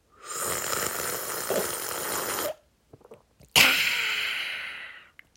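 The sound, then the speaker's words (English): Two long, loud, airy slurps of hot lemon and ginger tea, each a drawn-out hissing sip lasting a couple of seconds, separated by a brief pause with a few small mouth clicks. “Gonna be sipping the lemon and ginger tea all the way through this, because I think in the second half, I'm sipping it too.”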